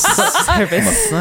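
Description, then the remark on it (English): A person imitates a snake with breathy hissing, blended with a short chuckling, voiced laugh over about a second. “Little snake.”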